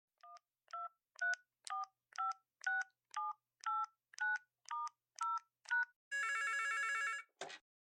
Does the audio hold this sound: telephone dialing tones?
yes